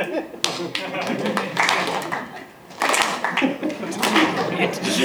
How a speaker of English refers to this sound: That was me applauding like in a film. Three times.